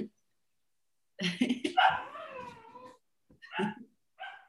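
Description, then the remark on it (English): A puppy yaps and whines in a few high, reedy bursts: one long run of yelps, then two shorter cries after a pause. It's fairly loud, with no talking. “And your puppy.”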